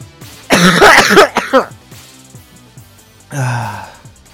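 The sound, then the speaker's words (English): A loud burst of harsh coughing, a quick run of hacking coughs, then a short pause and one more raspy cough or throat-clearing near the end. “I'm going to leave in me coughing, though. Don't worry, we're going to open on me coughing.”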